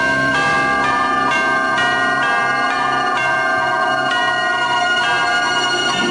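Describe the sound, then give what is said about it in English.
Loud, ringing chimes from a clock strike a quick melody, bright bell tones sounding in rhythmic succession, each note overlapping the last with a sustained metallic shimmer, no voices present. “He goes in to fix the clock, and he's about 22 seconds slow, but the song begins blaring from the clock.”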